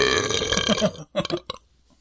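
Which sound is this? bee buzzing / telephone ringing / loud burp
loud burp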